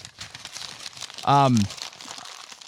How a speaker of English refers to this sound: I gotta crumple it up.